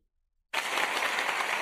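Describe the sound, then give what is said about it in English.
A round of applause bursts in abruptly after a short silence and carries on as steady, dense, loud clapping with no voices over it. “Before I spin the wheel, round of applause for Ready SG.”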